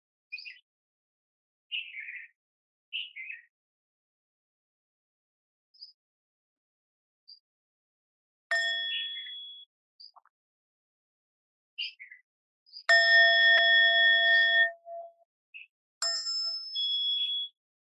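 A meditation bell is rung twice, its clear metallic tone sustaining and fading, with a couple of softer strikes and faint bird chirps in the background.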